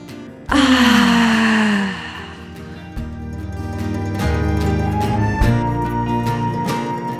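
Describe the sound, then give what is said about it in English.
A loud, breathy yawn, taken as a deep breath, slides downward in pitch for about a second and a half, then gives way to steady, soft instrumental music with gently shifting chords. “All right, so let's end with a deep breath. Ready? Inhale. Or maybe a yawn this time.”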